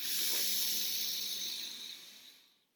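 A single long, deep diaphragmatic breath during a breathing exercise, hands pressed against the chest and stomach, airy and hissing, holds steady for a couple of seconds and then tapers off into silence. No one speaks.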